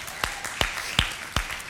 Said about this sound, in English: Go ahead and clap, that's all right.